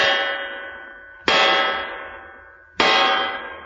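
A guard uses a bronze knocker on a door with bronze fixtures, striking three times at slow, even intervals, each blow a loud metallic clang with a bright, bell-like ring that fades before the next. No voices are heard.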